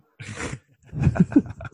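A single sharp, breathy sneeze bursts out, followed by a few short, low voiced sounds like murmuring or grunting.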